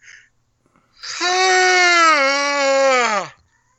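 A single long, loud, voiced yawn stretches for about two seconds, holding a steady tone before sliding down in pitch as it fades out, with no talking around it.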